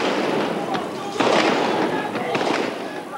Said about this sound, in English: And then, as troop lorries were seen moving down the road, there was gunfire from those lorries.